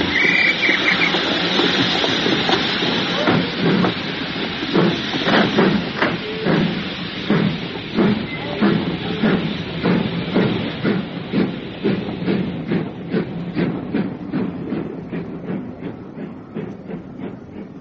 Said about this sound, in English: Oh, we'll miss the train. Run! Stand away there!